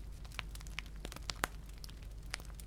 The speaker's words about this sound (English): In hearing nothing but the sound of the restful and hypnotic crackle of the fireplace, your body begins to settle.